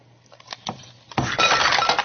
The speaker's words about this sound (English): Okay, dump the ice cubes in here. Okay.